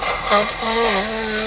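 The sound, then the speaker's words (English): Someone blows their nose in one long, steady blast, a breathy rush with a buzzing nasal honk running through it, fairly loud and lasting about a second and a half. “I know that's totally not podcast etiquette to blow your nose, but sometimes you got to do what you got to do, y'all.”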